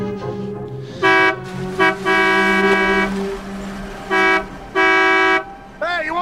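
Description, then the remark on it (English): A convertible car arrives, its horn honking repeatedly: about five loud, steady toots, short and long, followed by a brief final beep, with a low engine rumble underneath. “And to the fact where it gets to like the last bullet or two, and there's so high energy into this that when some guy comes in a convertible thinking that valets, they both turn on him.”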